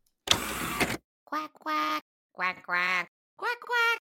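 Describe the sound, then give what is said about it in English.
A human voice imitates a duck, giving about six nasal quacks in quick pairs, fairly loud, after a short burst of harsh noise at the start. “Quack, quack. Oh, I didn't upload the quack.”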